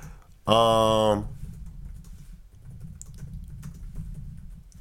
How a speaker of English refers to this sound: Sorry, I'm typing some shit over here.